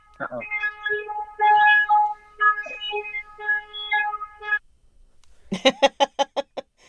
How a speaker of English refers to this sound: What was that? It's a car going off or something. Beep, beep, beep.